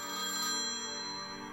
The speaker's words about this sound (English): We were awakened by the phone ringing.